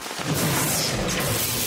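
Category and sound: nature, lightning strike thunder crack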